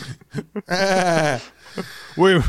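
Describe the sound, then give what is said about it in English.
A person imitates a sheep, giving a long, wavering bleat and then a shorter one, loud, with a few brief vocal sounds before. “The sheep? The crown? The sheep.”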